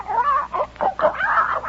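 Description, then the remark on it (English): A person's voice makes a quick run of barking, woofing noises for a koala bear chasing after creatures, four or five yelping bursts in a row, fairly loud, sounding a bit like squawking. “Gus ran after them, barking like everything, or woofing, or whatever koala bears do”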